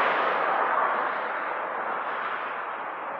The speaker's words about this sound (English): I'm hitting the main road here, so you'll hear some cars.